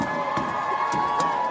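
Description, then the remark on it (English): A steady roar of crowd noise from people leaning out of windows, cheering and clapping for a large group of young people, with voices blended together and a few sharp, scattered claps over a constant, fairly loud wash of sound. “Oh my God, there's people leaning out the windows and clapping for this large group of young people, and I find this so inspiring.”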